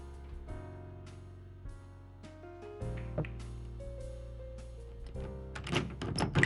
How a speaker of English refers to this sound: The door to the bar.